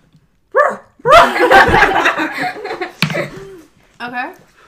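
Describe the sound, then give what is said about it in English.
A person mimics a dog's bark with a few loud, throaty woofs, broken up by laughter from others and ending with a shorter bark-like yelp. “Wait, dude, do the bark.”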